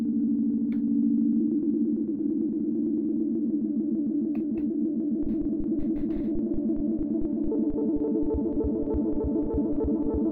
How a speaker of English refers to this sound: Okay, so I think it's actually not supposed to be so droney. I think it's supposed to be several tones.